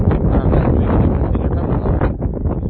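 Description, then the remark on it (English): Loud, continuous wind buffets the microphone in a dense low rumble, surging and dipping slightly without a break for the whole stretch; no voices are heard. “You can probably hear right now it's super windy.”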